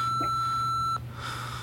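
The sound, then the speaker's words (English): A single steady electronic answering-machine beep tone, signalling the caller to leave a message, lasting about a second, clear and fairly loud over a low hum, then cutting off to quiet line hiss. “Sorry I couldn't take your call, but leave your name and telephone number at the sound of the tone, and I'll phone back post-haste.”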